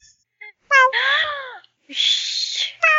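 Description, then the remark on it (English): A cat meows loudly: a few short chirpy calls, then a long wavering meow, a raspy drawn-out yowl, and another meow starting at the end. “Yes, you find a cat. It's a kitty cat.”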